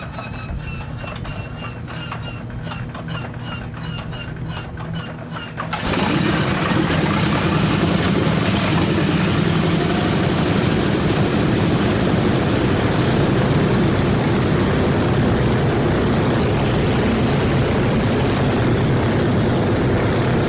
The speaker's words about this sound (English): As the sun began peeking over the horizon, 111 Superfortresses started up their engines.